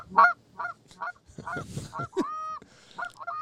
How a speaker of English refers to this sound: And that's a goose.